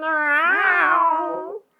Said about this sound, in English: Dude, there's a cat meowing in the basement, singing the song of his people.